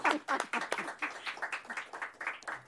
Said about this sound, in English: Let's give the panelists a big round of applause and the moderator. Thank you.